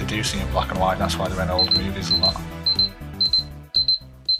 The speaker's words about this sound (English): That sounds like that's a timer. The alarm. Yeah, that's the alarm.